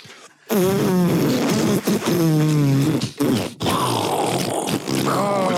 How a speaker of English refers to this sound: Oh! Five farts, nonetheless.